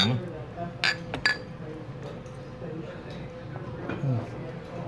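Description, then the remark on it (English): Glasses clink together in a toast: two bright chimes in quick succession, followed by a low murmur of voices and room noise. “Awesome. Cheers. Cheers.”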